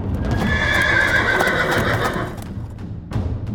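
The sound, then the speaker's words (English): A horse whinnies loudly for a couple of seconds over a steady clatter of hooves clip-clopping, the trotting continuing on its own after the neigh fades. “Each man gave her 100 horses, and soon she was one of the richest people in the kingdom with more than 10,000 horses.”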